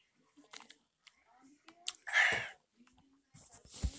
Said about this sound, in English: Something caught my windpipe. But take a sip of water real quick to get that all flushed out.